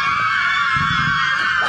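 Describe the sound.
A person lets out one loud, sustained, high-pitched scream, imitating the roar of cheering sports fans, with no break for nearly two seconds.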